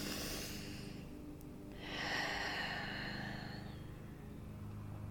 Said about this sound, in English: So do some deep breathing. I'm going to take a breath now because I feel like, talking about stress makes me stress sometimes because it's just so big.